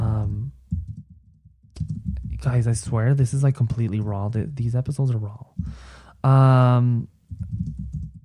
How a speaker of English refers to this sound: And I'm just typing like what I'm thinking, and that's what's the beauty of it.